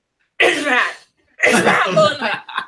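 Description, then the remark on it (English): Two explosive cough-like bursts from a voice, the second longer and garbled, as if words are being coughed out, giving an odd, strained cough sound. “That's a weird cough. You should get that checked out.”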